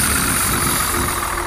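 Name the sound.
rocket ship engine roaring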